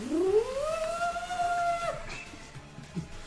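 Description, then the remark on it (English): A voice imitates Clink roaring: a single loud, drawn-out cry that rises in pitch and holds for about two seconds before cutting off, followed by quiet background. “And then, like, you hear Clink just start roaring.”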